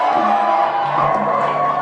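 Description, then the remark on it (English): A crowd of voices shouts and cheers together in a sustained, loud roar, many overlapping calls blending into a dense wall of sound that holds steady throughout. “Then we are going to shout for the last time.”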